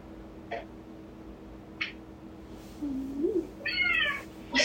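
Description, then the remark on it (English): A female cat, lying down, meows, a rising harmonic cry near the end, after a couple of short soft clicks and a faint murmur over quiet background noise. “Did you hear her? She's like, no.”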